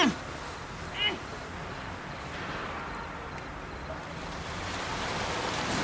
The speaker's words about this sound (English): It's starting to rain. We're not gonna sleep in the rain, are we?